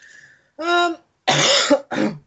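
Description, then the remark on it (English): A person makes a raspy, retching hack, a voiced gag followed by two harsh, noisy coughing bursts, imitating a cat hacking up a hairball. Fairly loud. “was I like cough up a hairball.”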